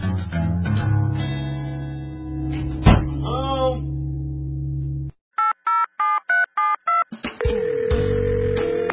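A quick run of about seven short touch-tone dialing beeps as a caller phones their mom, evenly spaced and fairly loud, cutting in after a dense stretch of music-like sound and followed by another burst of sound.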